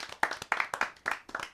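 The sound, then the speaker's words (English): People clapping in a quick, steady rhythm, about five sharp bursts of claps over a second and a half, fairly loud with no voices. “Clapped and everything.”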